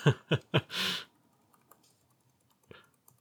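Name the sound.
computer clicking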